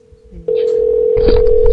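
A loud, steady telephone tone cuts in abruptly after a brief quiet moment and holds continuously, with some muffled background noise rising underneath.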